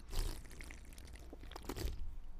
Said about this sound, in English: So it's ASMR beer sip.